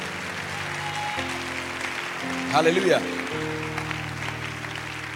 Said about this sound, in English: Now, if you are clapping, do it well.